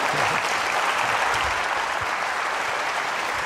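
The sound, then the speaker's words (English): Sustained audience applause at the end of a talk at a lab lecture event, a dense, steady wash of clapping that stays loud and even throughout, with no voices standing out. “I think they're all afraid of your applause.”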